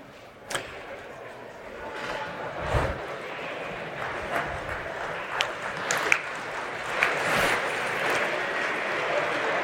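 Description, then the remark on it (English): An audience claps steadily for several seconds, a round of applause for a two-finger Kit Kat they found in their envelopes, a dense patter of hand claps with a few sharper claps standing out, sustained at an even level. “A round of applause for a Kit Kat.”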